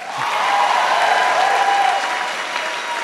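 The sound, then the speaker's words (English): Sustained audience applause, a dense, steady wash of many hands clapping at once, loud and even throughout with no voices standing out. “Keep clapping!”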